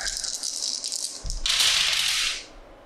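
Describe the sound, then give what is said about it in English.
Pink dice rattle in a cup for over a second, then spill out with a bright, clattering roll that fades away. No one speaks. “Oh, for the love of God, I'm not using these pink dice anymore.”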